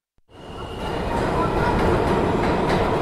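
A New York City subway train rumbles loudly and steadily after a brief silence, a continuous roar of wheels and motor with a faint whining tone early on; no one speaks.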